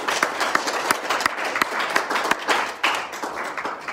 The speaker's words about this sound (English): So if we could just give a clap offering to the Lord, that would be wonderful.